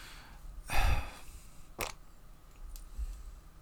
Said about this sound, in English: That's a good fart noise.